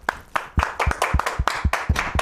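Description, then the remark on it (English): A short round of applause from a small group, with crisp hand claps landing in a quick, slightly uneven rhythm for about two seconds, no voices over it. “I think that's a round of applause.”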